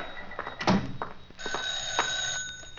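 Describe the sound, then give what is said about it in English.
A telephone bell rings, a bright metallic jangle with a couple of sharper bursts over a sustained ringing tone. No one speaks over it. “I'll get it.”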